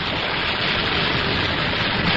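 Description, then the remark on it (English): A loud, steady rush of compressed air from a cylinder hisses without a break as a Navy airmen's self-inflating life raft, taken out of its cover, inflates into a small boat, a broad, even roar of noise with no voices over it. “The thing's blown up to make a regular little boat.”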